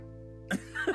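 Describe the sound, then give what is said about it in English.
A cat lets out a short, drawn-out meow, starting with a brief breathy burst before the tonal cry, over a low steady hum. “Your cat just said, okay.”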